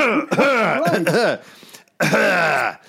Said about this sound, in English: But the worst thing is, you know, you often need to clear your throat, you know, like...